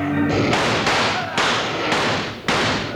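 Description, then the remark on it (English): Loud gunshots ring out in a rapid volley from a gang of riders fleeing out of town with a stolen body, five sharp cracks at uneven intervals, each trailing off into a rumbling echo that overlaps the next. “Just about when Wild Bill Hickok and Jingles were going to ask the sheriff to identify the dead flame rider, a gang of riders stole the body and rode out of town in a hail of lead.”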